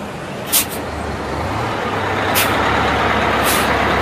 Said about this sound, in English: Sounds like a Greyhound bus. Wow. It was a Greyhound bus. You even got the brand right.